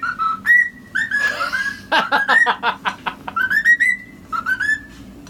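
A parrot whistles a recognizable melody, in key, with clear sustained notes, a burst of quick chirpy trills in the middle, then more tuneful phrases.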